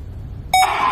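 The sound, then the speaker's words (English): In a Vizio 60-inch 4K Ultra HD TV commercial, after a moment of low background rumble, a sudden electronic beep rings out loud and clear as a moose head on the wall transforms into a big flat-screen TV, blending into a bright, sustained tonal shimmer. No one speaks. “But when you hear that beep, the moose head on the wall transforms into a big flat screen TV, and suddenly they have something in common.”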